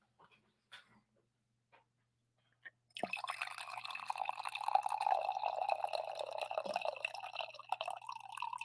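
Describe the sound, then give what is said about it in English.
A few soft clicks and taps, then Chardonnay pours steadily into a glass for about six seconds, the gurgling splash rising slightly in pitch as the glass fills. “Let's have a little glass of Chardonnay this morning.”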